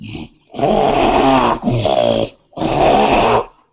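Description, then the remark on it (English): Loud snoring from someone who has fallen asleep, in three long, rasping bursts with short pauses between them, a harsh growling rattle to each breath and no talking. “fell asleep”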